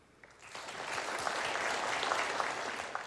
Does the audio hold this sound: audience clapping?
yes